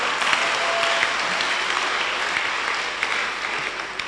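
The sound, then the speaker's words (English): A crowd claps steadily for several seconds, a dense, continuous patter of many hands without any voices over it. “Oh, I thought you were clapping.”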